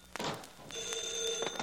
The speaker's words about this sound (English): Oh, my private phone. Probably my wife.